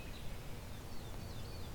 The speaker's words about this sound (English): Field sparrow.